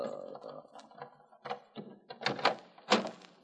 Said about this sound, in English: Open the door, Joey, please.